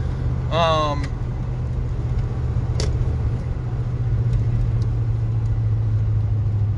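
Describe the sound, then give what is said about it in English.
Steady, low engine drone and road rumble heard from inside a moving car, constant throughout, with a brief rising chirp near the start and a single sharp click midway. “Sorry, I gotta unpack myself and I'm driving.”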